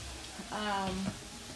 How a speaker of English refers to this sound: And you guys are gonna hear the rain. You get the natural rain in the background. It is pouring down here in Florida.